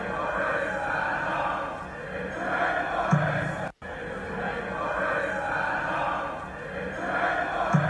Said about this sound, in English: This was last night, yeah, at the darts World Darts Championship in Alexandra Palace. The fans in the darts stood up and started singing "Stand Up If You Hate Boris." This is what it sounds like.